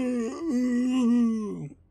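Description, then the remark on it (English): A voice imitates a werewolf howl: one loud, sustained tone of under two seconds, wavering briefly near the start, then holding steady before sliding down in pitch and cutting off. “So is it like part wolf howl and part just a human like.”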